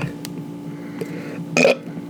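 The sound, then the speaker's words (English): A long, low, rumbling burp drawn out, with a sharper, louder gurgle near its end. No one speaks over it. “Because you're farting, you're burping.”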